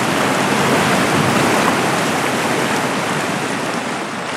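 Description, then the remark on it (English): A river rushes steadily at night, a dense, continuous wash of flowing water, loud and unbroken with no voices or other sounds. “All that could be heard was the river.”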